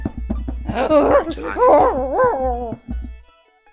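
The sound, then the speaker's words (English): A dog whines and whimpers in drawn-out, wavering cries for a few seconds, with faint scratchy scraping sounds from the dog at the start and end. “The dog's scraping away again.”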